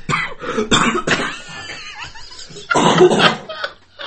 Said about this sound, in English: That's made me cough for real now.